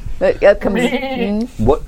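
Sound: sheep bleating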